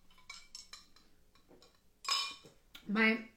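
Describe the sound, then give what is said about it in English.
A glass is handled as someone grabs a sip of water: light clinks and taps, then two louder bright clatters of glass against a hard surface, with soft rustling in between and no talking. “let me grab a sip of water.”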